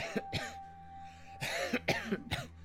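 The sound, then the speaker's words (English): A person coughs: two quick coughs, a short pause, then three more harsh, dry coughs in a row over a faint steady hum. “you start to cough a little bit.”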